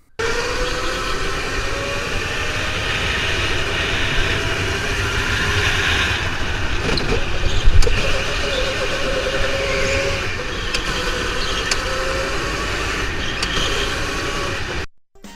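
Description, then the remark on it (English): Loud, sustained roar of race car engines with a droning, slightly wavering pitch, holding steady for about fifteen seconds before cutting off abruptly, with no one talking. “Ladies and gentlemen, start your engines.”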